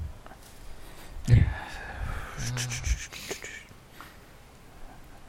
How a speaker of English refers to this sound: Bless you.